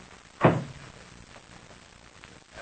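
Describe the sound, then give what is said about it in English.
The door to the rear compartment of a plane thuds shut once, fairly loud, with a short boomy decay, followed by a couple of faint clicks as it is locked, against a quiet background hum. “You will take our two guests and show them to the rear compartment of my plane. Then lock the door and stand on guard in front of it.”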